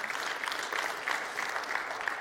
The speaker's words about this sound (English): It's worth clapping for, I think, because he truly is amazing.